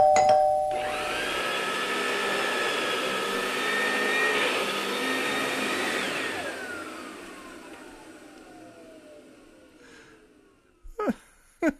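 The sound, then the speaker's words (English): A steady droning whine rises and holds, then slowly winds down and fades, followed by a doorbell ringing twice in quick succession, two short, sharp bursts near the end. “I love not only that the doorbell rings twice, which I think is just a great thing he threw in there, that why twice?”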